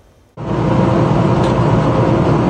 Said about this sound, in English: disturbing dash cam video was posted online capturing a near collision involving two semi-trucks on a BC highway